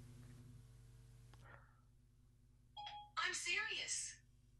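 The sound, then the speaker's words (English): A short electronic chime sounds after a low hum, followed by a bright rising double-tone of Siri activating on a phone, accidentally triggered by the spoken word "shearing", then quiet. “Because shearing sounds like, hey, Siri. I'll have to turn my phone off.”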